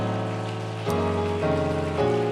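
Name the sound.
audience clapping hands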